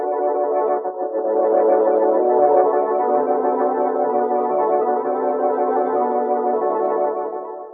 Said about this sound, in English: In the quiet evening air, there suddenly comes a whirring of wings. It's a helicopter, apparently out of control. Like a giant bird, it flaps crazily about for a few minutes and then heads out to sea.